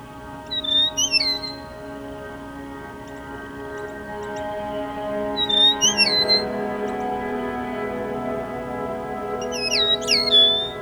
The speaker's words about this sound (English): This bright and cheery melody belongs to an equally bright and cheery looking prairie bird species, the eastern meadowlark. They are slightly bigger than a robin, camouflaged brown and buff on their back and wings, and have a bright yellow front